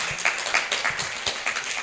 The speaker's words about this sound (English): I have 12 years of abstinence as of a week ago. You can clap.